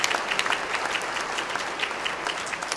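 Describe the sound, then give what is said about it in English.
An audience claps steadily for a man who answered a question, a dense, even patter of many hands with crisp sharp slaps, holding a fairly constant loudness throughout with no voices on top. “Everyone, please give that man a round of applause.”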